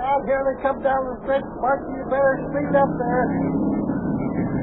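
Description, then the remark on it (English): A racing car engine revs and roars as cars race around a bend on a track, its pitch rising and falling in quick bursts before settling into a steady, loud drone, with what sounds like voices in the background. “Come on, Sparky! Come on! Come on, drive that car!”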